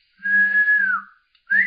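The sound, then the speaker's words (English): A breathy, hollow whistle made by blowing across a bottle: a long steady tone that sags downward, a short pause, then a second rising burst, fairly loud. “You're just whistling at a bottle.”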